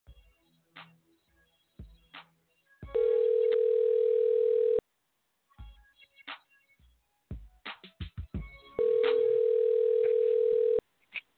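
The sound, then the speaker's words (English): An outgoing phone call rings with no answer: two long, steady ringback tones about two seconds each, separated by a pause, with faint clicks and handling noises in between and no voices. “Just see if you can answer the phone.”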